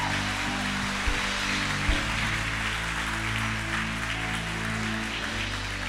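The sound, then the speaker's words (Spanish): An audience claps steadily in a dense, sustained wash of applause for the Lord, with a low organ-like hum and occasional thumps underneath; no voices stand out. “Dale fuerte el aplauso al Señor si tú lo crees.”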